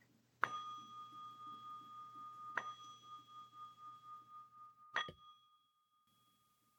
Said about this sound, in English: So here we go. Ready? Let's do the chime of the bell.